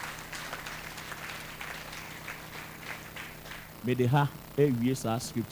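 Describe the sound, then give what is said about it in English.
An audience claps in a steady, dense patter of overlapping hand claps for several seconds, then the clapping fades under a man who starts speaking loudly. “Can't you clap?”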